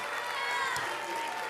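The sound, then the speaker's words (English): An audience at a Palm Sunday church service claps steadily for a second and a half, a dense, continuous patter of many hands at an even loudness, with faint voices mixed into the noise. “Oh, everybody clap your hands unto the Lord and shout unto God with a voice of triumph.”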